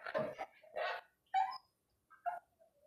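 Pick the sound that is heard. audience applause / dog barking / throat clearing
dog barking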